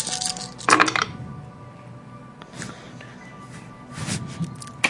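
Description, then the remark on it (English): Eight dice tumble and clatter across a table in a few quick bursts, with bright clicking rattles and quieter gaps between, moderately loud. “Rolling a pool of 8, and I rolled 3 zeros.”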